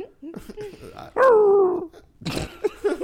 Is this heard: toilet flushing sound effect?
no